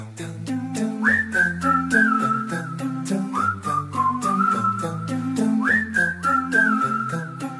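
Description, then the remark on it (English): A pop song plays loud and clear, a bright whistled hook gliding in repeated phrases over a steady thumping beat and bouncy bass, with no voices talking. “We're just gonna like pause the episode here. You can hit pause too, and we all go listen to ….”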